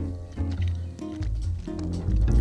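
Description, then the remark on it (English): Moist, squishy chewing of a Philadelphia sushi roll, with steady repeated bites and soft wet smacking sounds, fairly loud and continuous, with no talking. “Look at that ASMR chewing.”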